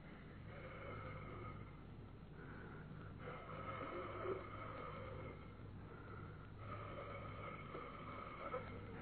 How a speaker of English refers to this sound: Again, coming out of the keyhole. Not a draft. Not a draft at all. What I felt was breathing.